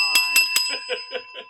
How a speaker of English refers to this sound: See, that wasn't a move on. That was the bell ending the match.